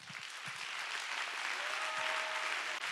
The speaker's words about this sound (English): Okay, everybody stop. Everybody clap your hands and give him praise.